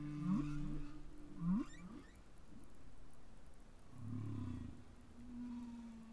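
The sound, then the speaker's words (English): Whale song recorded underwater: low sustained moans with rising upsweeping calls early on, then a deep groaning swell and a long steady tone, against a soft hiss of ocean background. “you get new songs evolving and sweeping through the population.”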